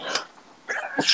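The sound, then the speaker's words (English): A sharp sneeze bursts out after a brief breathy lead-in, a sudden hissing, explosive sound with no talking around it. “Bless you. Oh, God.”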